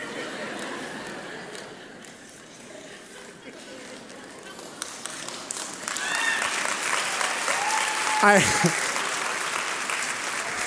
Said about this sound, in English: I trust you're not clapping for me.